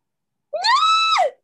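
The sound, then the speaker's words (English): A single loud, high-pitched human scream, rising sharply, holding steady for under a second, then dropping off, with silence before it and no talking. “I'm gonna stop screaming.”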